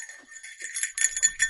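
A small bear bell jingles continuously with bright, tinkling chimes, shaken in a loose, uneven rhythm, fairly quiet.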